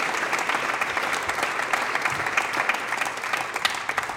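Sustained audience applause for an intern, a dense wash of many hands clapping at a steady, fairly loud level for several seconds without any talking.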